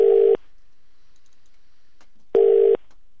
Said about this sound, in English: We're trying to phone